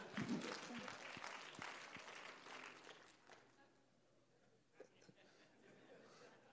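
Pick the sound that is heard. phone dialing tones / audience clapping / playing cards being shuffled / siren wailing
audience clapping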